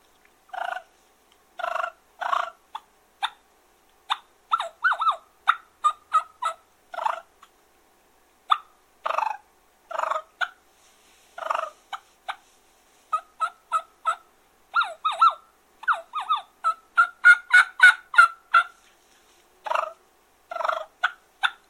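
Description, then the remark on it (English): Turkey clucks and soft rolling purrs made on a diaphragm mouth call, a straight V, split V: a series of sharp clucks interspersed with short purring runs, loud and clear with no talking. “I'll do some clucking and purring for you.”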